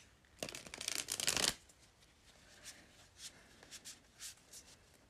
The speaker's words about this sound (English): I will be shuffling my new tarot deck, the Light Seer's Tarot.